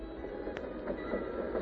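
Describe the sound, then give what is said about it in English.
A steam train of the San Gabriel Railroad, the first railroad to Pasadena, linking Pasadena with Los Angeles, in 1885, rumbles steadily along the rails, fairly loud, with a dense mechanical clatter and a brief sharp click partway through. No voices are heard. “The first railroad came to Pasadena, the San Gabriel Railroad, which linked Pasadena with Los Angeles.”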